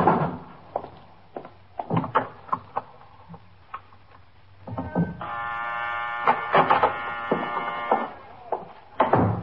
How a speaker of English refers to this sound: Look, the downstairs door is locked. Can you press the buzzer?